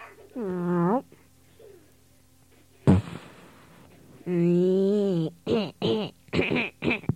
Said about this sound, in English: Just farted.